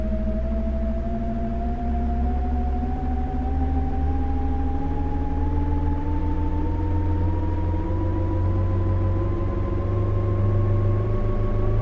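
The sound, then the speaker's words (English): A train running at its top speed, next stop Shinagawa, with a steady low rumble and a humming motor whine that climbs slowly in pitch over about twelve seconds. No one speaks. “This is the speed of the train. The top speed of this train.”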